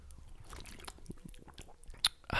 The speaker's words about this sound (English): Sorry, hold on. Let me get a little bit of water. Get ASMR.